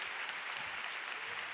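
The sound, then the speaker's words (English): An audience applauds to give God a big hand, a dense, steady wash of many hands clapping at once with no clear individual beats, sustained at an even level throughout. “Come on, give God a big hand.”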